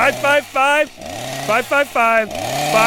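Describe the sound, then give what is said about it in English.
A voice imitates a chainsaw cutting into a studio wall, making loud revving, buzzing bursts that rise and drop in pitch, several short surges followed by a longer grinding whine. “I'm going to use the wall of the studio with my chainsaw.”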